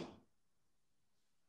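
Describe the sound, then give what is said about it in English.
A door slams shut with one loud, sharp bang right at the start, its boom fading within a fraction of a second into near silence. “Somebody just smashed a door.”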